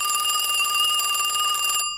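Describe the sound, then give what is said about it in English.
A telephone rings loudly and steadily for about two seconds, a bright, rapidly trilling electric bell that cuts off abruptly. No voices are present. “The phone lines have been repaired, you say? Hello?”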